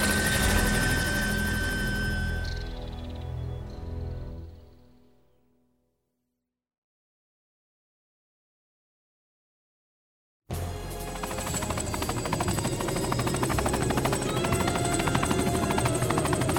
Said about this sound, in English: Over there, there's another helicopter. Perhaps they've come to help.